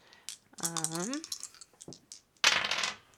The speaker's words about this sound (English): Drop my dice. Try that again.